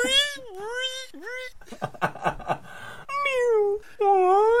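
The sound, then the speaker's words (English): A voice imitates whale song with long, swooping, wavering moans that rise and fall in pitch, broken up by a burst of breathy, chattering noises in the middle before the loud moaning resumes. “How about just whale sounds?”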